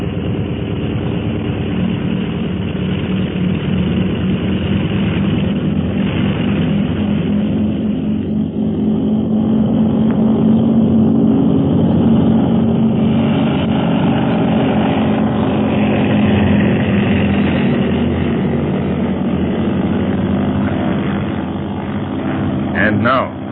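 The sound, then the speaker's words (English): A propeller aircraft engine roars loudly and steadily as it takes off, a continuous droning hum with throbbing low tones that holds for the whole stretch. “Fasten your safety belt, Quan Wu. I'm about to take off.”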